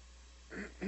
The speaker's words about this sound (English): And I won't want to convince you, I'm about to cough.